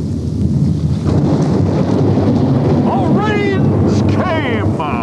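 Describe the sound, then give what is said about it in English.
A heavy rainstorm roars steadily with deep rumbling thunder and gusting wind, loud throughout, while brief high warbling calls rise above the downpour near the end. “Oh, and then it rained. Yeah. Yeah, it rains.”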